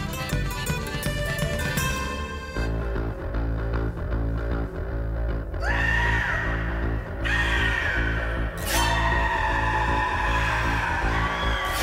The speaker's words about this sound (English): Dude, I love this so, because I was not expecting that bass line to come in, and then you get the shrieks, and it's great